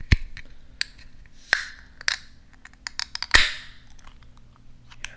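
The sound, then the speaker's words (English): A beer being opened: scattered clicks and rustling handling noises, then a few sharp pops, the loudest followed by a brief fizzing hiss. No one speaks. “I'm going to open this beer right now.”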